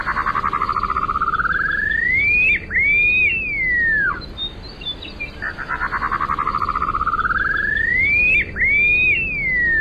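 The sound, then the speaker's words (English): An upland sandpiper's song repeats twice: a long rising trill of whistled notes swells upward, then breaks into sweeping up-and-down whistles like a wolf whistle, over a low steady background hum. “The upland sandpiper, whistling while he works by a runway near you.”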